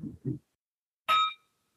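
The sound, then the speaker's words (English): A bell is struck once, giving a bright metallic ring that fades over a moment, preceded by two soft, low thumps. No one speaks. “Would you please ring the bell”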